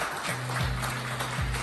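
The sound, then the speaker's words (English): A crowd applauds the student advisors steadily, a dense wash of many hands clapping at once, with a low hum running underneath throughout. “y'all clap it up for the cool.”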